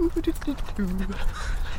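A crow caws in a quick run of four short, clipped calls, then lets out one longer, lower drawn-out caw, over a steady background hiss.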